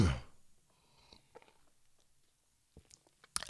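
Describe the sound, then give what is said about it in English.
A few soft wet mouth sounds of someone sipping an Alpine Beer Company beer, with small slurps and a swallow spaced across a quiet stretch, ending in a sharper click. “Let me take a last sip.”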